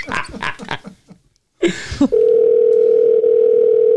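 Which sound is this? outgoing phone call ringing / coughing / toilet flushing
outgoing phone call ringing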